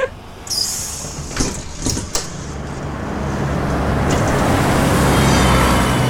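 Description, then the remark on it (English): The door of the Maker Bus, a mobile maker bus from London, Ontario, opens with a sharp pneumatic hiss and a few clunks, then the engine's broad rumble swells steadily and fills the rest, with no talking. “Hop on the magic make bus.”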